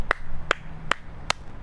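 One person clapping four times at a slow, steady pace, each clap a sharp, crisp slap with a faint low hum underneath and no voices.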